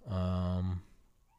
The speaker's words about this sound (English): These rude sirens are going off while I'm trying to talk. I'll tell you what, no respect. No respect.